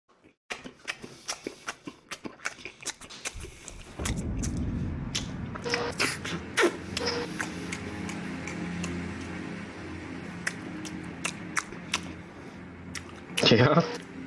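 Someone chews pizza with wet, squishy smacks and sharp mouth clicks, sparse at first, then turning into a louder, denser, continuous munching, with a brief harsher burst near the end.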